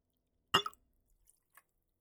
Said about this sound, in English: Grab a rocks glass and put some ice in it. To that, add one shot of the Dutch gin.